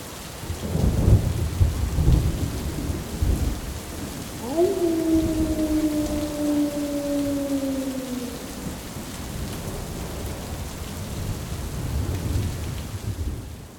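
A thunderstorm with heavy, steady rain and low rolling thunder rumbling throughout; midway, a long, steady howling tone rises over the storm for a few seconds before fading. No one speaks.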